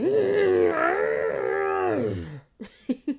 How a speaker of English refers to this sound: It's like this exasperated grunt slash weird vocalization. And sometimes I just have to get that out instead of just sitting on the emotion of being frustrated or overwhelmed.